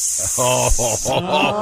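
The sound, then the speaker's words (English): A voice imitates a snake with a long, drawn-out hiss lasting about a second, while other voices laugh underneath. “But a snake's pronouns are he, his...”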